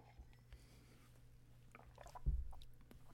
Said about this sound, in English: I need a sip.